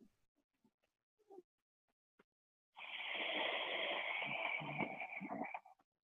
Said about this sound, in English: It's more of a, you know, it's more of a breathing that you could hear on a person who needs CPAP. It's back there.